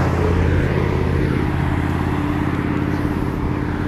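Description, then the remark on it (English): Steady roar of many cars passing on the street, coming from behind on the other side of the street, a continuous low engine rumble and tire noise with no pauses, loud throughout. “damn, a lot of cars, my bad.”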